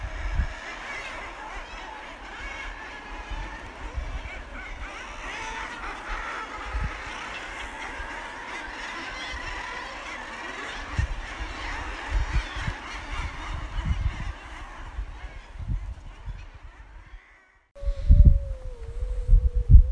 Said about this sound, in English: So it was pretty special having barely seen or heard a corncrake before in my life to be kept awake most nights by that male one wandering around camp and living up to its scientific name of Crex Crex with the wonderful call that it makes.